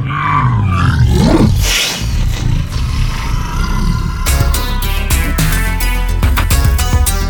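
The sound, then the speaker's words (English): A loud, deep animal growl swells and rumbles for a couple of seconds, then gives way to sustained rough, noisy roaring with sharp bursts, with no talking. “And according to the growl on the wall over there, it's time for another segment we like to call Bizarre Beasties around these parts.”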